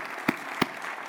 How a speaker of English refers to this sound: Let's clap and thank the Lord for that. That is just amazing.